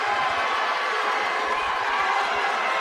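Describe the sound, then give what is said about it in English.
A large Oakland basketball crowd roars and cheers during a game against Riverdale, a dense, steady wash of voices at constant loudness that fills the whole stretch without breaks. “Got this Oakland crowd back in it, too.”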